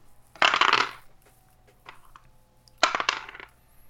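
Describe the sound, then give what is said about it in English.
Three dice clatter and rattle across a hard surface in two quick bursts, with a faint tap in between, landing on a 3, a 1 and a 6. The sound is fairly loud, and nobody speaks. “And since you've got super big, you roll 3 dice for this.”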